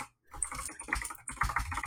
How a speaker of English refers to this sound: I'm actually just typing rapidly so I get the audio of me typing. I figured that's what you were doing.